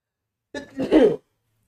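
A single sneeze: a short, softer lead-in followed by a louder, harsh burst, lasting under a second, alone with silence before and after.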